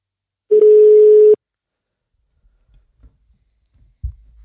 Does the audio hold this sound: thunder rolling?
no